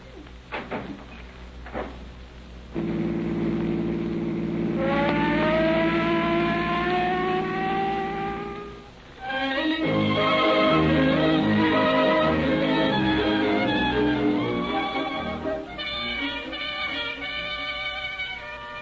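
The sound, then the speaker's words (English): A police car's mechanical siren winds up to a rising wail over a rumbling car engine, then falls briefly and starts up again, loud as the police car drives. “Will you pull the siren open all the way?”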